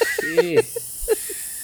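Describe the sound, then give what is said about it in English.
A person imitates a snake with a sustained, breathy hiss lasting over a second, fairly loud, with a few short voiced sounds mixed in near the start. “You know why snakes make that sound now? Because it's eating spicy food.”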